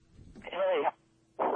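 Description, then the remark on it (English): A garbled, tinny voice of a caller over a bad phone line to a radio call-in show comes through in two short bursts separated by a brief gap, muffled and unintelligible, with a faint steady hum underneath. “Now you got a bad phone.”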